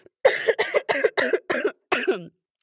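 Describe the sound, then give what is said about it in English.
A rapid fit of about six harsh, raspy coughs, loud, in a fairly even rhythm with a brief pause before the final one, then silence. “This cough is just”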